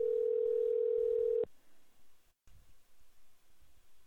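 A steady, single-pitched telephone ringback tone sounds loud for about a second and a half during an outgoing call to a mother, then cuts off abruptly, leaving faint hiss and soft rustling.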